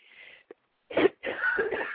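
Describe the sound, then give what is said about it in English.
A sudden sharp sneeze bursts out, followed by a longer rough, breathy blast of air. No one speaks, with only a faint hiss and a tiny click before it. “Bless you.”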